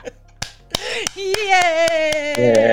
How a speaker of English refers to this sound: We will end this lovely thing with another clap out, and you can clap me out as well if you want.